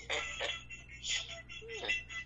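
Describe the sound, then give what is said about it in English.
A parrot mimics a ringing telephone with a few short, shrill trilling bursts in uneven succession over a low background hum, and no one speaks. “He does that and he imitates the phone. The phone is ringing.”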